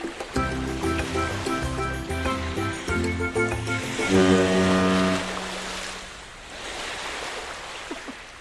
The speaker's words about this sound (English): Cue boat horn.